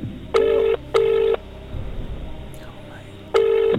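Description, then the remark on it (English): A phone's ringback tone sounds in steady bursts, two close together and a third after a gap, with faint background murmur between them, as a friend is phoned during Who Wants to Be a Millionaire. “Okay, it's ringing.”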